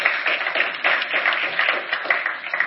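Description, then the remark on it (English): A crowd applauds steadily, many hands clapping together in a dense, even wash of sound that holds at a moderate level from start to finish, with no voices over it. “You can clap. That's good.”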